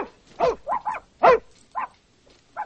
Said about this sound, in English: It's a puppy, isn't it? Mm. Yeah, it is. I can tell.